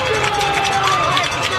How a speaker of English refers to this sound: And the Patriots have recovered the fumble. Big play right there on about the 3-yard line. This crowd erupts.